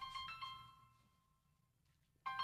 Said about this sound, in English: Uh-oh, here goes my phone again. Gotta love it. Gotta love it.